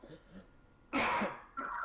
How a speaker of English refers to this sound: And you don't cough on the air. That's the first rule. I even have a cough button here that I never use. I would never fucking use the cough button. Fuck that. I'm gonna cough. You're gonna fucking hear it.